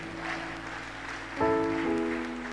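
An audience claps in a steady, dense wash of applause, and about halfway through a sustained keyboard chord swells in beneath the clapping, which continues at the same level.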